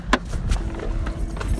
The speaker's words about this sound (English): Oh, it ran in here. Oh. I'm sorry. I had to get out the car. Fucking bee flew in here.